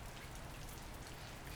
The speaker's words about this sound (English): It's raining. Water is soaking grass and overflowing planters, cascading down driveways into the street. I'm standing under an awning from which water is pooling and dripping lazily,